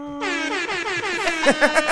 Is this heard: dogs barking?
no